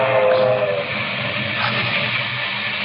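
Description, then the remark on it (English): A local steam passenger train rushes along the tracks through the rocky country of West Texas on a Thursday night in July 1931, with a steady, loud roar and churning mechanical rumble, a faint whistle-like tone drifting over the noise early on. No one speaks. “A local passenger train speeds through the rocky country of West Texas.”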